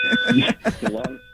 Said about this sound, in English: We got the fire alarm going in the Long Island area. I don't know what's going on.